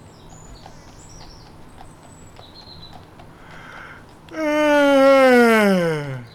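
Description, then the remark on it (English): After a few quiet seconds with faint birds chirping, a person gives a long, loud, voiced yawn at six in the morning; the yawn slides downward in pitch and fades out. “it is impolite to yawn before your superiors.”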